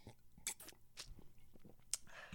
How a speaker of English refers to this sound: just give it a little sip